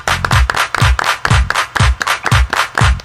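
Steady, rhythmic, loud claps locked to a deep booming electronic beat, about two beats per second for a few seconds with no talking.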